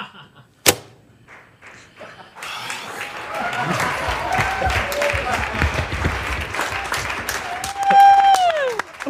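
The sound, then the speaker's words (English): Everybody on a film set bursts into sustained, dense clapping after a single sharp snap and a brief lull, with cheering voices and a rising-then-falling whoop near the end. “That's just everybody on set clapping after.”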